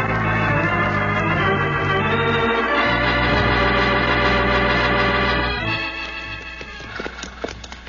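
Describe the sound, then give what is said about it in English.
Horses' hooves clip-clop in a steady rhythm beneath a loud, full musical backdrop that fades partway through, leaving the hoofbeats sharper and more distinct near the end. “Your horses into your stable.”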